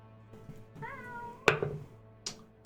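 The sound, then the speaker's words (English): A single drawn-out cat meow, clear, followed by a couple of sharp knocks. “And it's going to attack the cat that it sees. Meow.”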